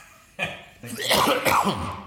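coughing and throat clearing

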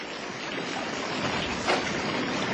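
rushing flood water

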